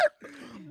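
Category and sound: human body sound, coughing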